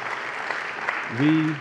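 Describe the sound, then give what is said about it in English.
A church audience claps steadily in a dense, continuous patter of applause, a hand clap of praise to God for their pastor, and near the end a single voice calls out over the clapping. “Let's give God a hand clap of praise for our leader”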